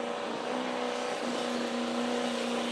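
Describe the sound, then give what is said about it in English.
A loud, sustained engine roars at high revs with a steady droning pitch, a pulling tractor straining under load at a truck and tractor pull, its wheels starting to spin, continuous throughout with no talking. “Up in Toulon this weekend, they're going to have the Toulon Truck and Tractor Pull.”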